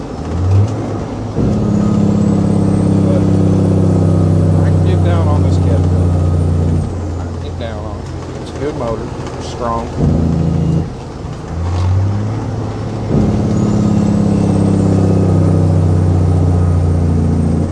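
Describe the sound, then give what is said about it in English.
A semi truck's engine brake blats loudly in two long, droning bursts, each ramping up then holding steady, with a shorter rumbling stretch in between. “I love the sounds of the jigs on this.”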